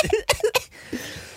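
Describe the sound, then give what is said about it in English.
Two sharp, harsh coughs mixed in with a voice making strained, croaky monster-movie vocal noises, then a quieter gurgling trail-off. “The coughs included. The coughing.”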